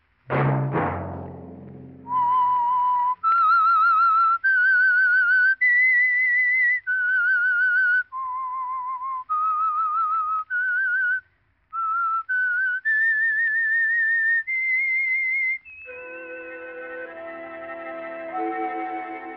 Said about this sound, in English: Let that whistle be your signal for the Signal Oil program, The Whistler, each Monday at 9.